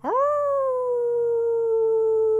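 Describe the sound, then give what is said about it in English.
A wolf howls once, a single long, loud note that swoops upward at the start and then holds a steady, clear pitch for a couple of seconds, with no talking. “Let them hear you. Let your howl be heard.”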